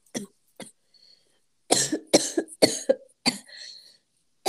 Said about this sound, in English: Sorry, I have a cold, so if you hear coughing, it's my fault, and I lost my voice.